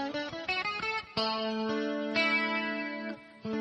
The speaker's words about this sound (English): So if you stack a triad 1-4-5, then you would call this, and by the way, those notes would be A, D, E.